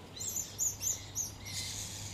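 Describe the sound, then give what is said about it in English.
Kura lorikeets and kākerōri flycatchers calling on the island of Atu, a quick run of four or five sharp, high chirps followed by a softer trailing call, fairly faint over a low steady hum, with no one talking. “These days, instead of squawking miners, Atu is full of the sound of kura, the lorikeet, and kākerōri, the flycatcher, along with other endemic species such as the Atu swiftlet, a local species of kingfisher, a fruit dove, and the Pacific pigeon.”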